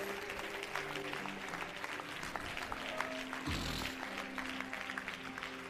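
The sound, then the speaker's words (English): A church audience claps hands to the Lord in worship steadily for several seconds, a dense, loud patter of many overlapping claps with a low sustained tone and a brief rumble underneath. “Everybody clap your hands right now. Let's clap your hands.”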